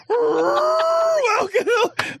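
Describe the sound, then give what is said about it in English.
A person vocally imitates a whale call: one long, loud, droning moan with a slowly bending pitch, followed by a few shorter warbling, rising-and-falling cries. “That's like an elephant sound. Whatever. That's not even like a whale sound.”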